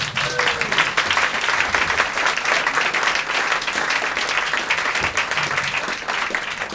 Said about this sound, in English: Hello, everybody. Hello. I recognize that applause. That is the applause of a group of people looking at a man they did not want to see.